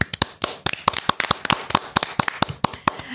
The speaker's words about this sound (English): And I know 33 guys who might deserve it. Oh, I am ready to give a round of applause. Okay, well, you know what? I think it's settled. The 33, you're getting the big clap.